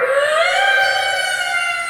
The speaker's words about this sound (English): This screeching sound like nails on chalkboard.